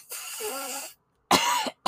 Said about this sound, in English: You ever, like, hit a wax pen or been around somebody who does smoke wax through a cart? Man, that's a very distinctive cough, ain't it?